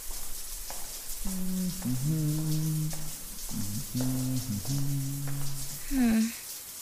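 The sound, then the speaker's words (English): A shower runs in a locker room with a steady, broad hiss of falling water throughout, while one man in the shower hums a wordless, wavering tune in a low voice over the spray. “Always sounds like one guy in the shower.”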